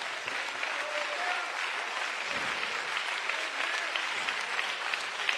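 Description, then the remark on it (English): A church audience claps steadily for several seconds, a dense, continuous patter of many hands at an even loudness with no voices standing out. “Man, some of y'all didn't even clap.”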